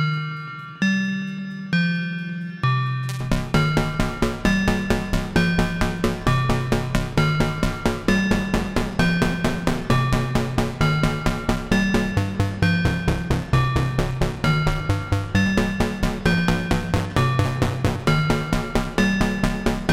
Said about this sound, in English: As I suspected, this might not be the best way to get bell sounds with the swamp ring modulator.